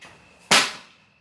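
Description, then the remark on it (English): A single loud, sharp smack as a broom swats down at a water bug on a garage floor, a crisp crack that fades quickly, with no voices. “He's currently trying to murder a water bug. We're in a garage.”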